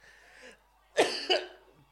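coughing

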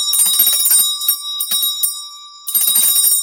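small bell being rung

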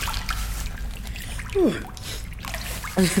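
water splashing

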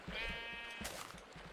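sheep bleating

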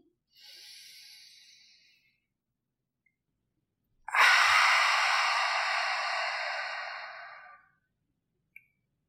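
deep inhale

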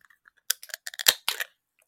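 beer can cracked open

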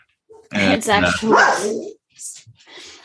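dog barking and growling

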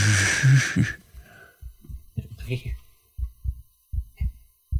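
heartbeat sound effect

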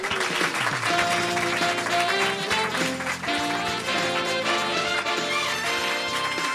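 studio audience applause

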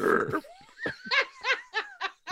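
burp

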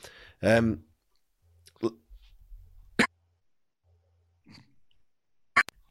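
coughing fit

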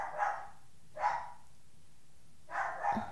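dog barking loudly

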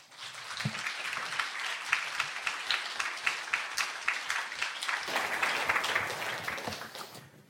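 warm audience applause

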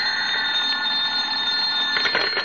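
telephone bell ringing

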